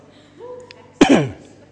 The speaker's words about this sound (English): And excuse me if I've still got a bit of a niggly cough. I don't mean to cough into your ears. So forgive me if I do that.